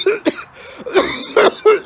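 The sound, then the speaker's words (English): A harsh, raspy chronic smoker's cough: several rough hacks in quick, uneven bursts, loud, with no talking around them. “That's a good chronic smoker cough right there.”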